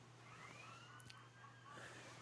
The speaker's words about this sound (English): It's a recording of the siren.